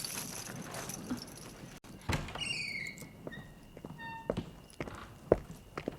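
Footsteps come down a staircase as a series of uneven, moderately loud thuds, with faint high squeaks and light jingling tones scattered between the steps. No one speaks.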